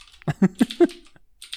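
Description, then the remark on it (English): Typing on a mechanical keyboard: four sharp clacks in a quick, even rhythm, followed by a couple of softer keystrokes trailing off near the end. “I just got my mechanical keyboard working again.”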